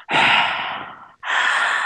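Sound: imitated heavy breathing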